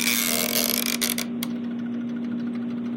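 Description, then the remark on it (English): An attic timer light switch is twisted with a loud, grinding rasp for about a second and a half. A faint, steady run of quiet ticks then continues over a low hum, counting down until the light shuts off. “So you hear that big twisting noise and then you hear tick, tick, tick, tick, tick, tick, tick.”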